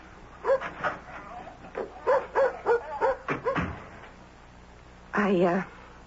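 A dog barks in a quick, uneven series of short, yappy barks, then falls quiet before one longer, drawn-out bark. Moderately loud, with no other sounds over it.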